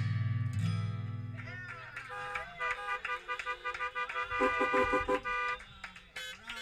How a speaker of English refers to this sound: I got to tell you, my favorite part was the horn honking.